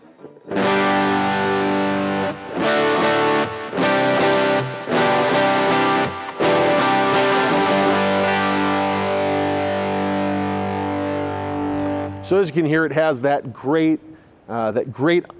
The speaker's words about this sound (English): So as you can hear, it has that great tube screamer saturation. The clipping is very, very familiar in feel and sound. I mean, it is a tube screamer, but this one is special.